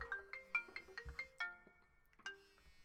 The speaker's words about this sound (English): You've got a phone call.